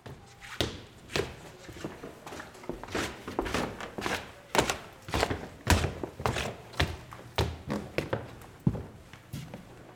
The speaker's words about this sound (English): We're going to the top of the dome of the Presidio County Courthouse. Creaky, tiny, skinny, narrow stairs.